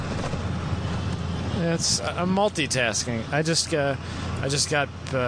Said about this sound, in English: I just got back in the truck from dropping off my enclosed trailer at the GridLife office, and yeah, now I'm driving back to South Holland. So I'm just north of the loop right now, so there's a lot of potholes, but we're doing all right.